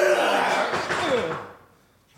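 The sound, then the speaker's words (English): A heavy wooden scrape and thud as people heave something hard against a door to barricade it, loud, with a groaning screech that fades into near silence. “That will be certain if you don't help me barricade this door.”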